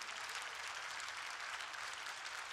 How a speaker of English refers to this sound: If you know I'm right, clap your hands and praise the Lord.